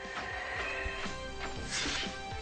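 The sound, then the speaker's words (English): A loud metallic smash as Raphael slams two Mouser robots together, with several sharp impacts in quick succession over a dense, noisy background of clanging and rumble. “Raphael had double size, got two of them, and smashed them both together.”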